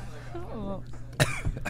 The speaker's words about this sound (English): I'm the only guy who makes a vape pen make you cough.